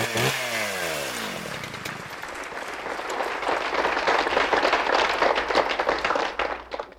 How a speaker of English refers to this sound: Ooh, stay away from that chainsaw